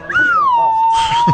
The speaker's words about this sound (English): Wait, play that whistle for everybody. Okay, hold on. Let me get it right. There you go.